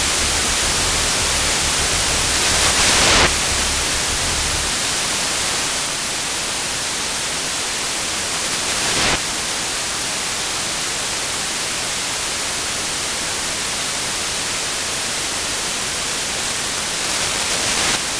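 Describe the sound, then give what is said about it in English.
A textural noise music track: a dense, steady wash of hissing white noise fills the whole stretch, loud and unbroken, with brief brighter bursts and a low rumbling layer early on. No voices. “Yeah, it's just got that something's real white noise kind of thing.”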